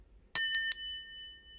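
A small, bright crystal bell rings three quick times, each strike sharp, leaving a clear, sustained shimmering tone that slowly fades out.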